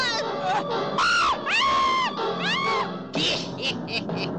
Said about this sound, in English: And now the screaming starts for them and for you.